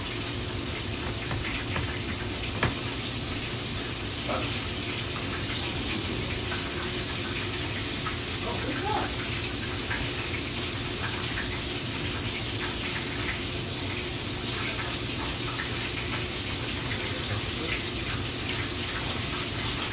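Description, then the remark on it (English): A couple of pieces of chicken frying in a pan, a steady, dense sizzling hiss with scattered small pops and crackles running continuously for the whole stretch, with no voices. “I'm not going to cook every single piece of chicken here for you guys to hear.”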